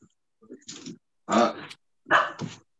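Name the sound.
dog barking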